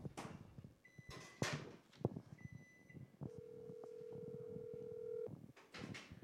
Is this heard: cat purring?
no